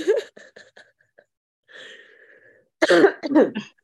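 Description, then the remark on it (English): Harsh coughing in uneven bursts: a short cluster of small coughs, a raspy wheezing pause, then two heavy, forceful coughs at the end. No speech. “I'm coughing loads because I have mental health issues.”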